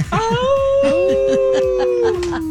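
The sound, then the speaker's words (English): A man imitates a wolf howl, a long sustained wavering tone that rises and slowly falls over about two seconds, with a few short vocal bursts at the start. “I'm a lone wolf.”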